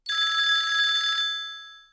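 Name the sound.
telephone ringing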